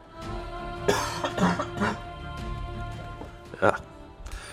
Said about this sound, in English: Stand by while I cough, sorry.